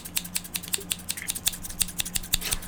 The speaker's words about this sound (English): Whose scissors are those? Wow.